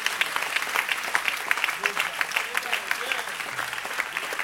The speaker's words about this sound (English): I thought somebody would clap their hands because God is speaking to somebody. That's good.